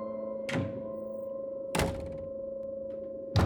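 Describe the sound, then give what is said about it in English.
A house door shuts and locks with three solid, evenly spaced clunks, each ringing briefly, on a cold night, over a steady low droning hum with no voices. “It's time to get back inside and lock the doors.”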